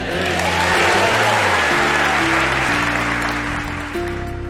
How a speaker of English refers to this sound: An enthusiastic crowd responding to Duck Dynasty's Willie Robertson as our featured speaker today on Focus on the Family.